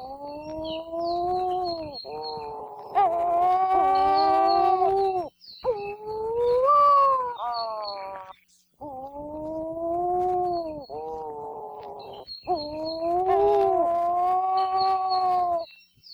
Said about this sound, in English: The name Uwaukani means calling or moaning petrel, and you can often hear these calls if you're lucky enough to live near a colony during their spring and summer breeding season.